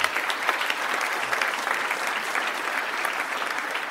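A crowd applauds steadily, dense overlapping claps forming a bright, even wash of sound that holds at the same loudness for the whole four seconds, with no one talking over it.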